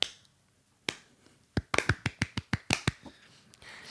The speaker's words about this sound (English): Can we get a golf clap for this Archdan guy?